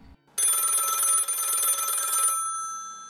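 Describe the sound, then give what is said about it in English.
A loud telephone bell rings once in a sustained metallic trill for about two seconds, then its tone fades away briefly, representing Mattei's phone call to running buddy Reese two weeks before the 1977 Western States 100. No voices are heard. “The phone call sounded something like this.”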